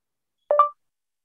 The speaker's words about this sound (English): So I'm going to hold the button down on the right-hand side. And when you're in a text box, you're not going to get a listen after beep. You're just going to get a beep.